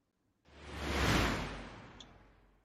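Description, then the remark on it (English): A single airy whoosh swells up from silence, peaks loudly about halfway, then trails off smoothly, a broad sweeping transition effect with no voices present. “Whoosh.”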